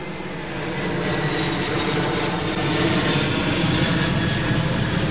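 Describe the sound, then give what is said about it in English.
A loud, steady roar of an airplane engine fills the air, a broad rumbling drone that swells slightly as the aircraft passes overhead. “Excuse me, plane just passed by.”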